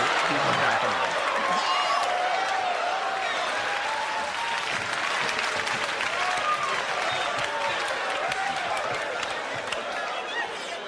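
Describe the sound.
Steady, dense applause from a crowd fills the whole stretch, many hands clapping at an even loudness, with scattered voices and a few whoops rising through it.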